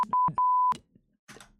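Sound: censor beep over swearing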